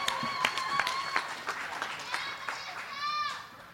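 An audience at a comedy debate show claps steadily in a dense patter for the grand finale performers, with high rising whoops and cheers breaking through near the end before the applause starts to die down.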